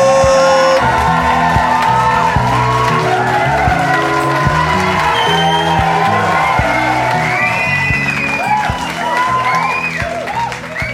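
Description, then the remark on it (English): A loud crowd claps and cheers for about eleven seconds, with whoops and shouts rising above a steady wash of applause that never lets up. “Clapping and stuff just makes me feel so good.”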